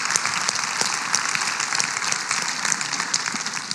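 A crowd at a graduation breaks into sustained applause for teachers and parents, many hands clapping in a dense, steady wash of sound that stays loud and even throughout, with no voices standing out.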